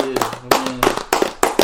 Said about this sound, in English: Round of applause to him.